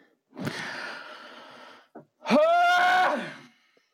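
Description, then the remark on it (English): A person lets out a long, breathy, strained groan, then a loud, high-pitched scream that holds steady for about a second before breaking off. No one speaks. “You know how good it feels to scream?”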